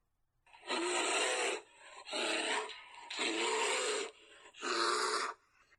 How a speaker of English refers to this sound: It's a bear! He can't believe his situation. There's a tiger below and a bear ahead of him in a pitch dark forest.